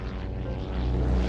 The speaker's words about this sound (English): The silver plane gleams in the sunlight as it leaves the grand hotels of Miami Beach behind, its twin propeller engines throbbing monotonously.